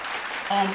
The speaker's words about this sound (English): Oh, let's clap that up immediately.